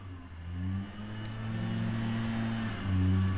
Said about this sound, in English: I don't know how many lawns could be mowed during this drought. It doesn't make any sense. They're always mowing, and they're just closer and closer.